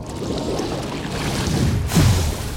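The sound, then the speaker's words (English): A single loud splash of water as Thetis materializes beside Achilles bursts out near the end, rising over a steady, washing background of moving water, full-bodied, with no voices. “Suddenly, Thetis materialized by Achilles with a splash.”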